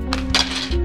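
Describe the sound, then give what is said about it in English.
Dice rattle and clatter inside a bag as the DM reaches for more dice during a tabletop game, in a few quick, bright bursts of clicking, the longest in the middle, over a steady low hum. “Can you hand me that bag of dice? I don't like that sound.”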